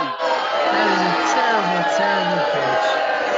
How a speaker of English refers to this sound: Can we get a boo for that? Best friends we there, man. Definitely boo. That is a terrible pitch.